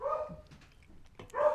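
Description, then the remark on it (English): A dog lets out two sharp barks about a second apart, with a quieter yip-like sound just before the second one and no talking. “Your dog does not want this to happen.”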